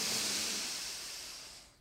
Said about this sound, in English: Let's all take a cleansing breath. Ready, confidants? In.